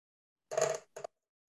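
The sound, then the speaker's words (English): Dice clatter across a hard tabletop, a rattling tumble followed by a brief second clack as they settle, with no voices. “A bunch of crazy dice.”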